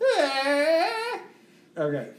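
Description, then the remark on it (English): A human voice imitates a cardinal's call: a long, sliding, whistle-like note of about a second, a short pause, then a briefer second note, both fairly loud and reedy. “So this is what a cardinal sounds like.”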